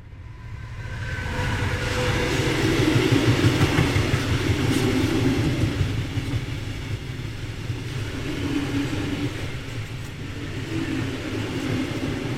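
A steady, continuous rumble of a train rolling along the rails, with low droning noise and faint rhythmic clatter, swelling slightly then holding steady throughout. No voices.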